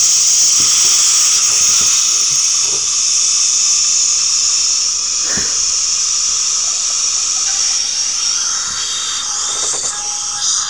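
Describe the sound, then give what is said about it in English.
A dental drill in a dentist video being watched whines at a steady high pitch for the whole stretch, wrapped in a loud airy hiss, with a few faint clicks and taps underneath and no talking. “No, I'm watching these dentist videos.”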